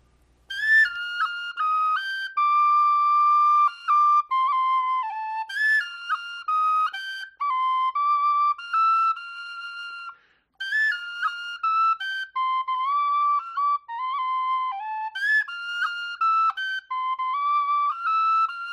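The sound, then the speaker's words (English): A traditional Scottish tune played solo on an F tin whistle: a bright, clear melody of quick ornamented notes in phrased runs, steady, with no talking. “here is Aird's setting for Lady Eliza Callender's favorite”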